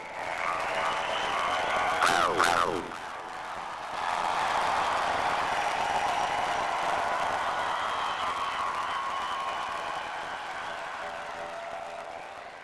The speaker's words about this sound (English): How many minutes of cheering is there at the end there?